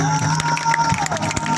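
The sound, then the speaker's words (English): A crowd claps and cheers steadily throughout, a dense wash of hand claps with whoops and voices mixed in, holding at a fairly loud, even level without pause. “Clap for her.”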